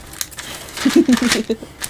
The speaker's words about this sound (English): You're gonna hear a lot of rustling of papers, and I do apologize for that.